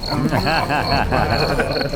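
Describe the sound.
Crickets chirp in steady, repeating bursts throughout, a high thin trill that keeps pulsing at an even rhythm, with a low murmur of voices underneath.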